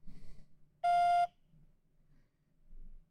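A single loud voicemail beep, a steady electronic tone lasting about half a second, with only faint low background noise before and after it.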